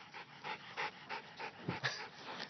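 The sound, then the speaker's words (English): Close-up, rhythmic panting with quick breathy bursts and snuffling sniffs from a small pit bull and a small dachshund trying to lick the phone during a walk in the bush, repeating steadily with no talking. “So anyways, if you're talking, I got a little pit bull, and I got a little Datsun weenie dog.”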